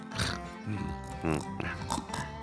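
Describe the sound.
A voice imitates the loud snoring of Defibulous, a paladin character sleeping on a couch who has just been nudged to roll over, with a string of rough, nasal snorts and grunts, several irregular bursts over a couple of seconds, thick and pig-like rather than a smooth breath.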